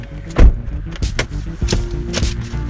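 Close-up movement inside a car: several dull thumps and clunks, like a door opening and seats shifting, over a low steady rumble, with no talking.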